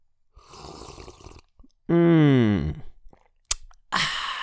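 A slurping sip of coffee, followed by a drawn-out, satisfied voiced 'ahh' and a sharp click, then a breathy exhale.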